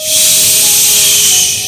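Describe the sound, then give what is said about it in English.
A voice imitates spraying insecticide on roaches with one loud, steady, high-pitched hiss lasting under two seconds, then tapering slightly at the end. No speech accompanies it. “You know, if you carry insecticide and you have roaches, you do like this.”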